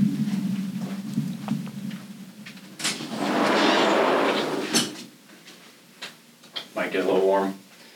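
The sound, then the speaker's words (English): A door closes: a couple of seconds of rushing, scraping sweep ending in a sharp knock, followed by a few smaller clunks and rattles, with a low hum underneath. “I'm gonna close the door real quick because it's loud.”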